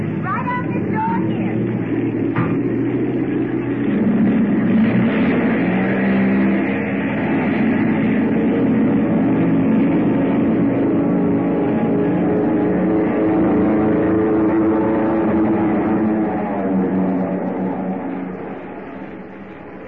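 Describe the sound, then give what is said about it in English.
A plane taking off at an airport: a loud, steady engine roar with a droning, humming tone that holds for about twenty seconds, then begins to fade away at the end. “Plane taking off.”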